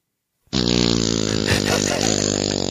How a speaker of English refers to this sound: Alexa, give me the wettest, stinkiest, shitty fart girl fart you could ever shit.